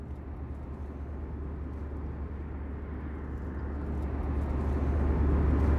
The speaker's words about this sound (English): Okay, we're on an airplane flying from Toronto to New York.